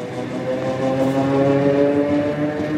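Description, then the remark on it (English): A steady, rumbling ride on a passenger train headed to the Donetsk region, filled with soldiers' partners, with a low mechanical drone and faint sustained tonal hums, heard continuously at a moderate level with no voices. “The women board a train headed to the Donetsk region, where the war's fiercest fighting is going on.”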